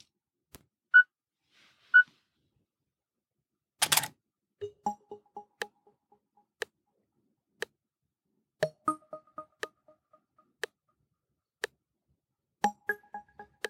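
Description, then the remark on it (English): Two short, mid-pitched beeps a second apart from smart glasses count down after the Describe Scene option is double tapped, then a sharp camera shutter snap as the picture is taken. After it, a run of quieter electronic clicks and soft tonal blips follows, with no talking. “When I double tapped the option, you heard some beeps, and that was counting down, giving you a chance to look where you wanted to look before the picture was taken.”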